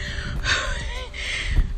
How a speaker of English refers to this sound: Yes, I'm breathing heavy because I'm out of shape. But that's real. That's the truth of my life right now. But I'm going to make it to this corner, though.